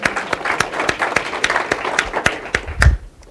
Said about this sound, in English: Give a round of applause to Andrew.